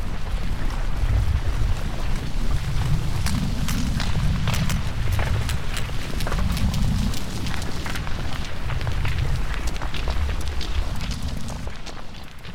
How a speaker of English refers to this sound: rumbled until a sudden explosion sent fragments of rock and fountains of lava shooting forth into the sky.